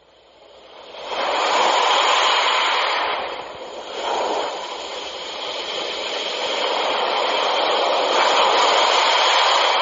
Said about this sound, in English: But it is, I may fall asleep because it's so relaxing. Alexa, start ocean sounds.